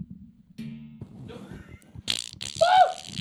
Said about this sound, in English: Yeah, I heard the spring break in it. I heard the spring pop. It's getting really loose. I know that spring pop. These are the very basic mic arms. It broke.